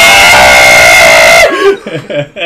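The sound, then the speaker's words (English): A voice lets out a loud, strained, sustained yell for about a second and a half, mimicking a cartoon power-up scream, then cuts off into brief talking. “As soon as he hits 100%, that is his Super Saiyan scream. Yeah. That's his power-up scream.”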